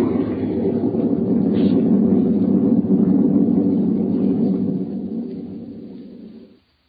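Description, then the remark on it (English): A deep, heavy rumble of thunder during a storm rolls on for several seconds, loud, before tapering off and fading out. No voices are heard. “Through the thunder crash, I heard her.”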